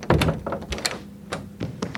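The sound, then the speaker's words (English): A door with a glass pane being opened, with a series of hollow thunks and clunks from the latch and frame, fairly loud, followed by a quieter knock or two. “What are you waiting for? Open the door.”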